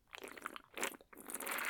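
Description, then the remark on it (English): A loud, wet slurp from a drink can, coming in a few noisy sucking bursts that build toward a longer, hissing pull at the end. “Crowley took a loud slurp from the can.”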